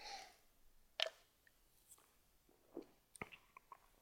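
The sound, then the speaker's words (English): Someone takes a quiet sip of beer: a sharp click, then soft wet slurping and swallowing sounds in near silence, with no talking. “So let me take a sip of beer here, this little interlude.”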